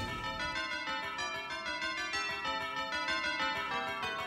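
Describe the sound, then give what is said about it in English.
Bells ring continuously in a dense, overlapping peal, with bright metallic tones struck in quick succession. The ringing stays full and steady throughout, with no voices. “I love these angelic bells that are caroling in the wind.”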